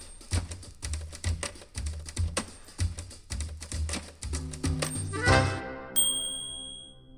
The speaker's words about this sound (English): But for the most part, we worked in companionable silence, the keys of our typewriters syncopating our days.